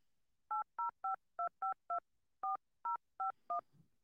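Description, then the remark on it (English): Ten clear touch-tone keypad beeps dialing a phone number: a quick run of six tones, a short pause, then four more, with no talking. “I called myself.”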